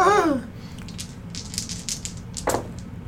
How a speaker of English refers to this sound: Roll all your dice. All of my dice.